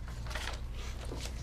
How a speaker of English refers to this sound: We'll just open one of the doors. I'll do the same thing I've been doing, and I will go to the left first, which is the one in front of me. Okay. So you open the door.